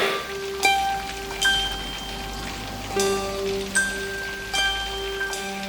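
The first heavy raindrops fall from black clouds over a large city, hitting a surface one by one, spaced irregularly about a second apart, each with a sharp splat, over a low steady hum and faint sustained tones as rain begins.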